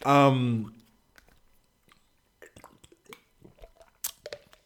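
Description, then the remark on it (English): Someone sips water: a brief voiced sound, a pause, then a run of soft wet slurps, clicks and swallowing noises lasting a couple of seconds. “And I've got to have a sip of this water here.”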